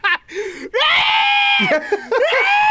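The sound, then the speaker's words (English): A loud, aggressive scream bursts out, a sustained high-pitched shriek that holds for about a second, preceded and followed by shorter strained vocal cries. “it starts off with a very aggressive scream that made my butthole, like, I wasn't ready for it.”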